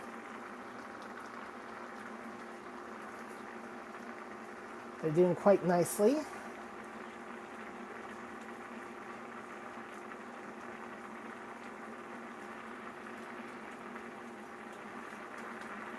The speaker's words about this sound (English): So I don't know if you can hear the green beans boiling or not, but